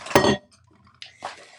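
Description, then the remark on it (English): A glass clinks sharply at the start, then after a short pause come two brief, soft sips of water, with no talking. “So, I'm going to take a sip of my water.”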